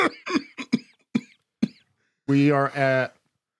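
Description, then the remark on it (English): A quick run of six short, sharp coughs after eating a Carolina Reaper pepper, fairly loud, followed by a brief pause and then a strained, drawn-out vocal groan. “Oh, no, the cough.”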